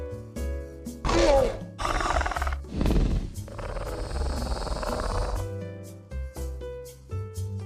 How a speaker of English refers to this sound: Every time this door closes behind me, it reminds me of a Velociraptor, which I'll put the sound in right about now.